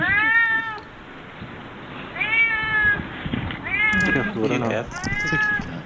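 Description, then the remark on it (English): A cat meows four times in drawn-out, rising-and-falling cries spaced a second or so apart, loud, over a faint background murmur. “you try to imprison this cat?”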